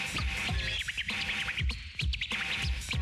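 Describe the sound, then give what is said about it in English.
Rapid turntable scratches by a DJ chirp and warble in high, bird-like squeaks over a thumping beat, the quick back-and-forth record cuts imitating a twittering bird, loud with no talking. “I make it sound like a bird.”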